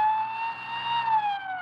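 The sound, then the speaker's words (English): A police siren wails loudly during a police chase, holding a steady, slowly bending tone throughout, with a faint low rumble of vehicle engines underneath. “There's another one coming toward us. They're blocking us off.”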